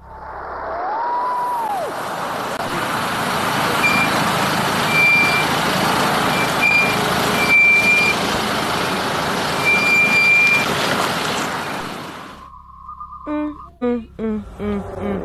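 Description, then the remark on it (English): Faint, high-pitched reversing warning beeps repeat at intervals over the loud rumble of a large idling vehicle and traffic, then the noise cuts off and a voice is heard briefly. “I just heard beeping sounds.”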